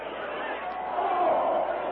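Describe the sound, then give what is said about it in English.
A dense, screaming, panic-stricken crowd roars in a continuous, agitated din as it flees in every direction from charging elephants, many voices blending into one wash of noise that swells a little toward the middle before holding steady. “With the crowd fleeing in every direction, the great jungle beasts tossing and thrusting aside all who failed to get out of their path”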